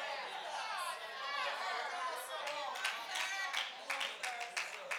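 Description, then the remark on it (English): An audience chatters and murmurs, then scattered clapping picks up midway, sharp irregular hand claps cutting through the steady crowd noise. “Y'all clapping.”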